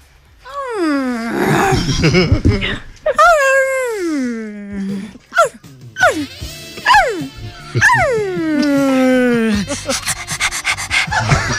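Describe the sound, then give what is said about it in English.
A person vocally imitates a dog as flirtatious barking and howling, letting out a series of loud howls that slide downward in pitch, broken up by shorter yelping barks, with no other sounds around. “You're gonna bark sexy barks and sexy howling to make him love you again.”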